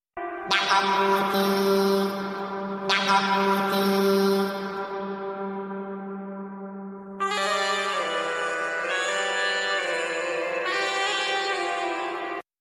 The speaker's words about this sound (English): And I think …'s Yakaguri sounds even more alien, don't you think? Sounds like an alien language.